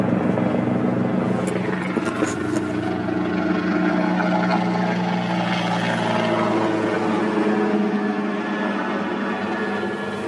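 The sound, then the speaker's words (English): A water-bombing aircraft drones overhead at a mega bushfire that is not under control, its steady, loud rotor and engine roar filling all ten seconds with a dense low hum and throbbing mid tones. “Another water bottle bombing out.”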